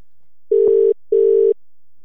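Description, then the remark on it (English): An outgoing call's ringing tone while calling a man back: a double ring of two short, steady, mid-low buzzing tones in quick succession, fairly loud, with silence around them and no voices. “All right. I'm calling him back. I'm calling.”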